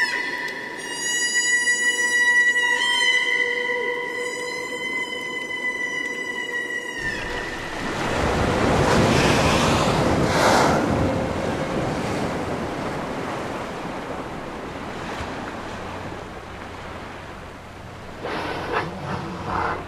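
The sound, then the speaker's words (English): A chorus of humpback whales calling underwater in the Pacific off Alaska: sustained, harmonic moans in a few long phrases, then a broad, steady wash of rushing water noise that fills the rest. No voices. “… recorded this chorus of humpback whales in the Pacific off Alaska.”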